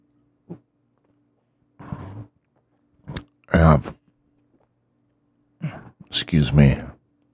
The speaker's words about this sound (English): I believe that I'm going to have another sip of my brewski, as I'm doing now.